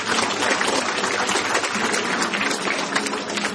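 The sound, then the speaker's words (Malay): Thunderous applause from a large crowd at an evening Persib gathering, a dense, steady roar of clapping that stays loud and even throughout, with no voices rising above it. “Inilah, kita berikan tepukan bergemuruh.”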